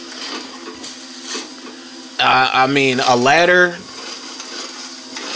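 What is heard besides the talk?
chainsaw running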